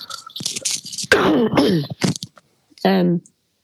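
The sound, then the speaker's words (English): A person with a cold gives several harsh coughs and throat-clearing bursts in an uneven cluster, some rough and breathy, others with a voiced, groaning edge, ending in one last hoarse cough. “Excuse me, I'm just going to cough.”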